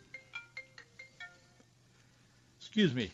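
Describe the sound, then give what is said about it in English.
A cell phone rings in a studio with a quick series of bright, evenly spaced electronic tones over a low background hum, then a man starts talking loudly. “Forgot to turn off my cell phone as I entered the studio today, and that's probably President Joe Biden calling me, but I don't have time to talk to him.”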